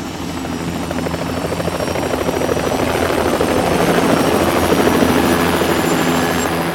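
Helicopters taking off, a loud steady rotor thumping and engine whine that swells slightly in volume over several seconds, with no voices.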